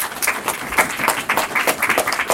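An audience breaks into steady applause, a dense patter of many hands clapping at a moderate level, sustained throughout without letting up.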